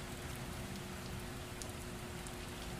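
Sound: rain falling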